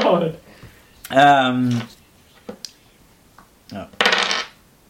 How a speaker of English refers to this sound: How many dice are you rolling? First one was to hit. That one is 15.